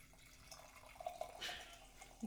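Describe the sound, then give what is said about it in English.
A drink is poured into a glass, a short trickle that swells into a brief splashy gush, then tapers off with a few small drips. No one speaks. “Kind of sounds like someone's peeing. Are we peeing or are we pouring?”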